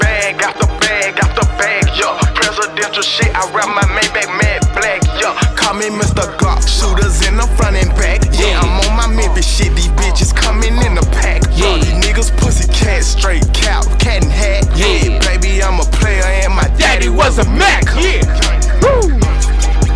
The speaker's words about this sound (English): Put your headphones back on. The song isn't over.